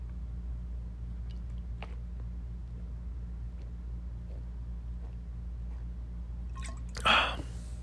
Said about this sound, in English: Hold on, I'm going to take a drink of this awful tap water.